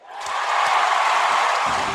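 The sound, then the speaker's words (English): An arena crowd at a basketball game chanting "MVP" after a free throw, a loud, steady wall of massed voices that swells in quickly and holds for two seconds, with no single voice standing out. “Crowd chanting MVP.”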